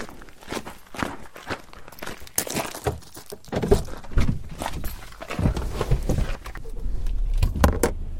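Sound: getting into a car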